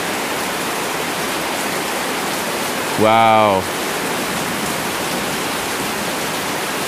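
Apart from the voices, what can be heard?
heavy rain downpour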